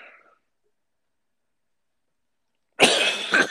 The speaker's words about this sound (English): Yeah, give me a second. I got a cough coming.